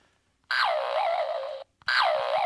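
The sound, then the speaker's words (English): A coiled telephone cord is twanged twice, each loud springy boing sliding down in pitch with a wobbly warble; the second twang is cut off. “This is a telephone cord.”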